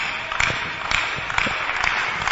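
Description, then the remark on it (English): An audience claps in a steady rhythm, many hands beating together roughly twice a second in a dense, moderately loud wash of sound, with no voices heard over it. “Those who are clapping, you are smarter in the spirit.”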